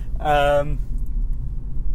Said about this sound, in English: We're recording in Romania. Yeah. We're in our rental car. And we're on our way from Bucharest to Brasov.